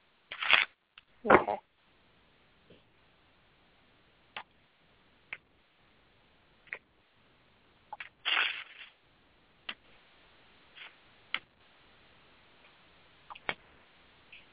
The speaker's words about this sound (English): Hold on. Shuffle these cards again.